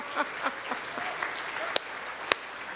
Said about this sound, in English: Now, honestly, I don't know why you're clapping.